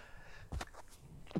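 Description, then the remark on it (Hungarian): A single sharp, breathy sneeze bursts out, a quick explosive puff of air with no talking, followed by a short soft rustle of breath near the end. “Hú, de rossz podcast közben tüsszenteni, elnézést.”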